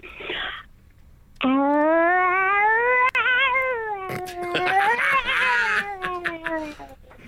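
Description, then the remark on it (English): A person imitates an angry cat's caterwaul: one long, loud, wavering yowl that rises and bends in pitch, then breaks into rougher, strained snarling wails near the end. “This is …, who does angry cats.”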